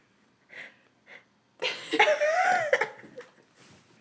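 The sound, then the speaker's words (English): Heavy breathing: two soft, airy breaths, then a loud, rasping, wheezy rush of air with a thin whistling tone, trailing off into ragged, uneven breaths. No one speaks. “Quit breathing heavily.”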